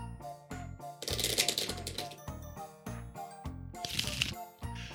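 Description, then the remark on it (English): A deck of cards being shuffled, with bursts of rapid riffling flutter and soft slaps between them, continuing for several seconds without any talking. “Anyway, let's get that good shuffle.”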